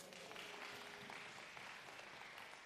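A crowd applauds the speaker's wife steadily, a dense wash of many hands clapping at once that holds at an even level throughout, with no one speaking over it.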